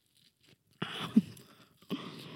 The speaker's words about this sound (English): You like the chewing?